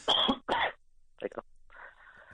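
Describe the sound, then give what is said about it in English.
Two loud, harsh coughs in quick succession into a phone mouthpiece, followed by a softer cough and a rough, drawn-out throat clearing, with no talking. “I need you, if you're going to cough, just, you know, move away from the mouthpiece.”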